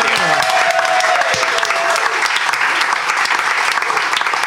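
A crowd claps steadily and loudly, dense overlapping hand claps filling the whole stretch without letup, with a brief murmur of voices near the start.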